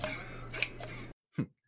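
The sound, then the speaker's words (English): Pruning shears snip through hair for a haircut in a few crisp metallic cuts over a low steady hum, then fall silent before one last short, sharp snip. “Well, just sit yourself down in that chair and I'll grab my pruning shears.”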